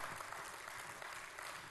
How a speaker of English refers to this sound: And that should make us cheer this morning. And can we just clap? Come on, clap with me. We have access.